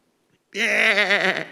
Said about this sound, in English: Kids, what's that? I know it sounds weak, but it's a sheep. Kind of a sick sheep.